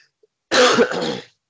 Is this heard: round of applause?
no